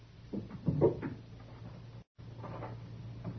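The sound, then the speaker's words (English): A wooden cabinet drawer slides open with a short rattle and clunk, followed by a few faint scraping movements over a low steady hum. “The drawer of that cabinet over there.”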